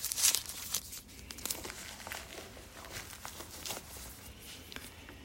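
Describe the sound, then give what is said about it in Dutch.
Crisp crinkling of the small plastic bag packaging a mobile phone battery as the battery is taken out, irregular rustles and crackles spread across several seconds, loudest at the start and continuing more softly, with no talking. “Want de verpakking is gewoon een plastic zakje.”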